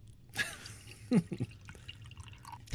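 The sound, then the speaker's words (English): Lavender Love kombucha poured into a glass: a brief splashing onset, then a few quick gurgles and drips of liquid hitting the glass, fairly faint against a quiet background. “All right, hand me your glass here. This is Lavender Love.”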